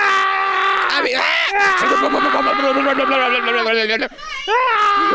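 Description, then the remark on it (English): A voice imitates a man screaming for his life after being sucked into a tire shredder: a loud, strained, wavering wail sustained for several seconds, with a brief break near the end before rising again. No actual words are spoken. “I was going to say, this man was probably screaming for his life.”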